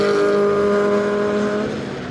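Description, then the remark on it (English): Racing cars scream past on a Grand Prix circuit, a loud, steady high-pitched engine whine that dips in pitch and eases slightly as it moves away. No one speaks. “And you can just hear all the cars go past it, so.”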